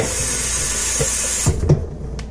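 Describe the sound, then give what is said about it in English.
Water is poured into a blender holding apple with a steady rushing hiss for about a second and a half, then cuts off, followed by a few soft knocks and clunks. “So let's try with a little water to be fair.”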